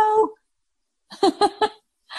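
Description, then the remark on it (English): A male dog whimpers: a short, high whine, a pause, then three quick whimpering yelps in a row and one more starting at the end, with no talking. “Adorable. Girl or boy? He's a boy. We got two of them.”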